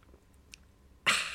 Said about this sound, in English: My mouth is so dry from reading all that out. Let me take a sweet, sweet sip of water.